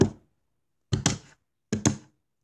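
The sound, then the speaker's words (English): Heavy thumping footsteps made by a person banging his feet: one thud, then two quick double-stomps spaced evenly apart, each loud and booming with a short fading tail and silence between. “She kept on making footsteps when they walked, like bams.”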